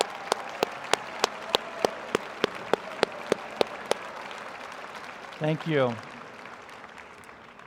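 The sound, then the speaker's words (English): Audience applause at a convocation, honoring returning students: a steady wash of clapping with a series of sharp, evenly spaced claps standing out on top, then dying down as a single voice speaks briefly. “If you're a returning student of any stripe and you are here voluntarily this morning to enjoy convocation, we want to applaud you as well.”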